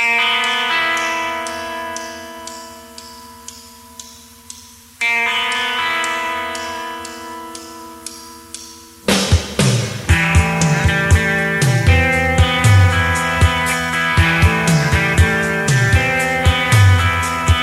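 Rough-sounding unreleased demo recording of a rock song that was played live on tour in fall 1987 but never completed as an album track: sustained, droning guitar chords ring for several seconds, then a full band crashes in with steady drums and bass, loud and driving, with no vocals yet.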